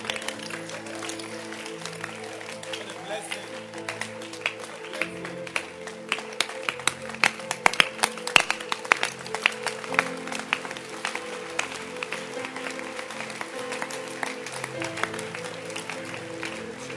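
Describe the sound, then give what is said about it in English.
An audience claps steadily and densely for the whole stretch as a service ends, the sharp, uneven claps swelling louder in the middle before settling back, with a sustained low tone running underneath. “If you love the Lord, keep clapping.”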